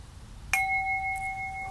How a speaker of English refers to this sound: So with that, I'll ring the gong and we'll do a little wide and tall.